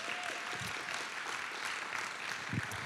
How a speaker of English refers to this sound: Come on, let's give him a better round of applause than that.